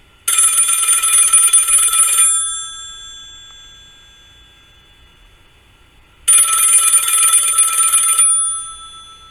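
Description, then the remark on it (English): An old-fashioned business telephone bell rings in two loud, metallic bursts of about two seconds each, separated by a pause of a few seconds, with the clanging tone lingering briefly after each ring. “The phone rings again.”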